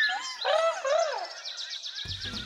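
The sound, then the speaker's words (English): Several birds chirp and warble together, bright sweeping notes giving way to a quick series of rapid repeated tweets, with a soft rumble entering near the end. “Here are some flower blossoms and orange slices and sunflower seeds for you to eat, my bird friends.”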